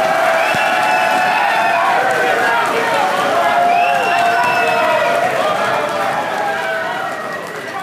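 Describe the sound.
A live audience claps and cheers loudly and steadily, with whoops and shouted voices rising over dense applause. The noise holds for several seconds, then begins to fade toward the end.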